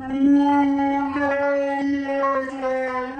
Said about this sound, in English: Then what you need to do is you need to just kind of adjust the pitch slightly. So bring the pitch of it down. Then what you need to do is you need to slow it down. So adjust the tempo like this.